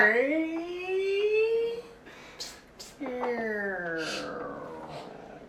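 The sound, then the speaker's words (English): A voice imitates an old creaky door with two long, strained, wavering tones: the first slowly rising in pitch, then after a short pause a second one drawn out and sliding downward. “That's an old creaky door.”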